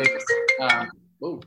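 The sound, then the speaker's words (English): A phone ringtone plays a short, bright melodic phrase of several quick tonal notes at moderate volume, followed by a pause and then a voice starting to speak. “Somebody's calling.”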